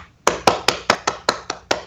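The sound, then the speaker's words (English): A short round of applause for Boss Fight Studio: about eight sharp, crisp hand claps in a steady, even rhythm, each one loud and clear, with no voices. “So a round of applause for Boss Fight Studio.”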